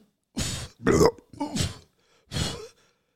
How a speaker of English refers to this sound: Oh, I really want that belch to be real. But I do too. I don't think it can be. Like, she did something, right? Because she did excuse me. It might be a hiccup. Someone dubs over. It's just a... Maybe it was just one of those... a serious belch.